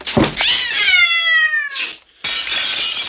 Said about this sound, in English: the cat drops out of nowhere onto his drawing board and then hisses in his face before turning to jump straight through a plate glass window.